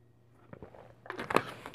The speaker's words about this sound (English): Pardon me for a second. I'm about to take a drink of water.